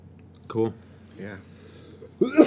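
Three brief, rough vocal bursts of coughing and throat clearing, spaced apart, with a quieter gravelly clear in the middle and the loudest, harshest cough at the end.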